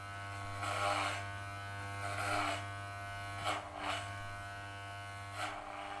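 Electric hair clippers hum steadily, with several louder rasping bursts at irregular intervals as they cut hair into a buzz cut; no one speaks.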